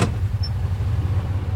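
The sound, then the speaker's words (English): A small farm tractor that rancher Jim Headley drives around his prairie cattle ranch to save gas, its engine running at a steady idle, a low, even rumble with a faint rhythmic throb and no voices over it. “Like with this little tractor he drives around to save gas, Jim's won awards for good management.”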